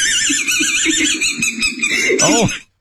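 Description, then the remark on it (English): A voice imitates a squeaky dog toy with a loud, high-pitched wavering squeal, squeezed out in rapid repeated pulses for a couple of seconds before stopping abruptly. “But every time he breathed, it made the dog toy sound.”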